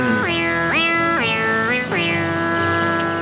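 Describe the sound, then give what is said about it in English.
A high, wailing singing voice from a film song swoops upward again and again in several long, sliding cries, loud, with a strained, cat-like quality and no talking. “It sounds like a dying cat and just sort of wailing.”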